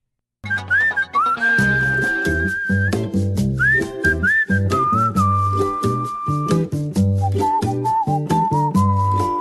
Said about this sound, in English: You know, that whistle goes very well with our conversation this morning because it's just calm, soothing. It cannot help but bring a smile to your face.